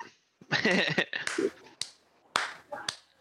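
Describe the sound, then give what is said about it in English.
Several sharp, thin hand claps heard through a computer land at uneven intervals, each a crisp clicky snap like a car blinker, with some vocal noise in between. “I know it won't sound this way on the podcast, but through the computer, your clap sounded like a car blinker, and I got really confused.”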